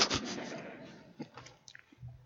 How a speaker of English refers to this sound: I didn't realize how long it takes to chew.